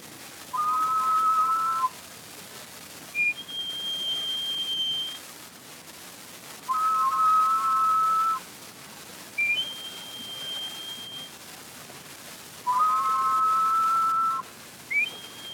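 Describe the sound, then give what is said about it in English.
Solitaire thrush of the California redwood forest singing: three repeated phrases, each a pair of steady whistled tones sounded together, then a higher, thinner sustained note, clear and pure with short pauses between. “Quite a number of birds seem to produce two tones, yet in all my listening, there is but one songbird who really produces two notes simultaneously. He is the solitaire thrush of the redwood forest of California.”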